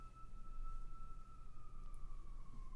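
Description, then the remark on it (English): A faint, steady siren tone slowly sinks in pitch over a continuous low rumble, one long drawn-out wail with no voices present. “It's a gnarly siren.”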